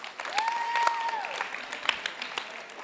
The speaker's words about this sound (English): So give them a round of applause for that.